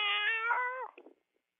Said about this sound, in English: Are you forcing that cat to meow?